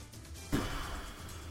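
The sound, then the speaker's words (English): A person imitates Skip Bayless's loud intake of breath: after a short pause, a sudden airy, hissing inhale starts sharply and is drawn out for about a second, with no talking. “I hate how he breathes. Like, this motherfucker.”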